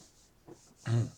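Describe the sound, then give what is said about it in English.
A short, faint catch of breath, then one loud, voiced cough from laughing that carries a low, laugh-like tone, over faint background hiss. “That wasn't a COVID cough. That was a laughing while overweight cough.”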